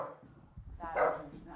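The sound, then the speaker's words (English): A puppy lets out a single short, yelping bark, moderately loud, with some low background rumble before it and no clear talking. “Puppy. That's enough.”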